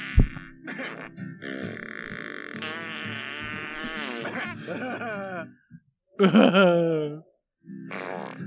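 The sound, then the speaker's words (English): A voice imitates long, buzzy fart noises: a drawn-out, wavering raspberry lasting several seconds, then a short pause and a louder, sputtering burst. “Ah, I broke your damn blood vessel! Mustache fart.”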